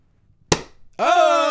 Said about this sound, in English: There's a twist plastic. All right. Okay. Engineering. Does that thing pop? Maybe this thing pops.